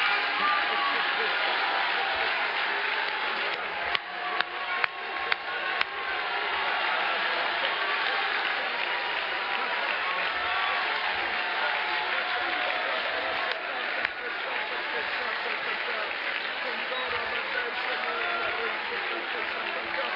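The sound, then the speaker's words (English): A church audience claps and shouts to the Lord together in a dense, steady roar of applause and voices that holds for about twenty seconds, with a few sharper claps standing out. “I think we ought to just clap our hands one more time and just shout unto the Lord with a voice of triumph.”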